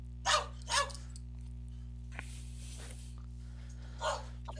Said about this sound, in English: I'm getting heckled by the dogs. The peanut gallery.